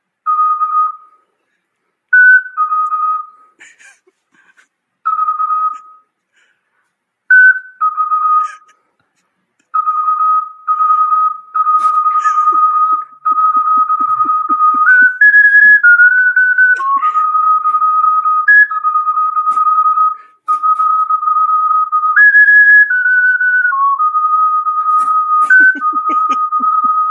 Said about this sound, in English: We met the legal quota for ocarina solos.